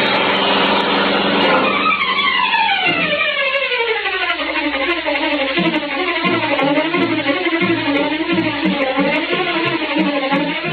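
The engine of the Green Hornet's powerful black car roars continuously through city streets, its pitch dropping at first and then rising and falling in repeated revs, steady throughout with no voices.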